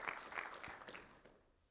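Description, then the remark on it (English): A church audience clapping together as a clap offering to the Lord, a dense, steady patter of many hands that thins and fades away over a couple of seconds, with no voices. “Let's give the Lord a clap offering because you're at church today.”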